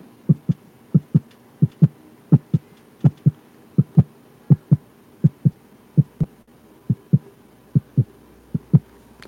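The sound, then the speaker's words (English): A voice mimics a heartbeat with steady, paired low thumps, a lub-dub rhythm repeating about a dozen times at an even pace, clear with no talking. “Oh wait, I gotta do the heartbeat sound now.”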